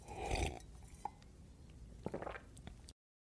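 Someone takes a first sip of wine: a short burst of handling noise, a single glass clink, then soft wet slurping sounds near the end. No one speaks.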